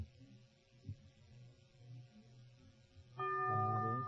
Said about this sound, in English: The bell is tolled.